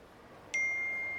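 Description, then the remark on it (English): A single bright phone notification ding for an incoming message, with a sharp onset, ringing out clearly and sustaining as it slowly fades, with no talking over it. “hang on just 1 minute. Let me check my phone. It's Maria from last night. She's written”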